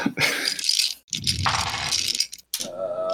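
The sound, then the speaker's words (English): A d8 and a d6 rattle and clatter across a hard tabletop in a few loud bursts separated by short pauses, ending with a final tumbling roll, rolled for a perception check in a tabletop game. No one speaks. “And roll a perception, half magic.”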